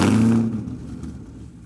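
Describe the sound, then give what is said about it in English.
A Corvette ZR1 supercar engine, fitted with the quietest exhaust system available plus added silencers, fires up with a loud, throaty burst, then quickly drops to a deep, rumbling idle with a faint clattering texture. “Let's have a little listen, firstly, to it starting up.”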